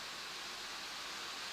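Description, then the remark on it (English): Steady, even hiss of falling rain, a dense wash of fine patter with no distinct drops standing out. It stays soft and unchanging throughout, with no voices. “you still hear me okay over the rain?”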